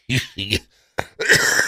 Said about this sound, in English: Excuse me, it's the cough everybody has